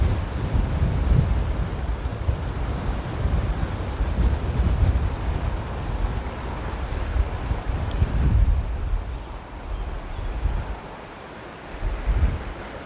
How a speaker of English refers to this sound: Big gust of wind there. I'll just let that pass before he throw it with cast. Whoa, that's windy.